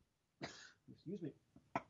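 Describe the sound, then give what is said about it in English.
A sharp cough bursts out, followed by a brief throaty vocal sound and then a second short cough-like burst, all loud. “I coughed and I apologize.”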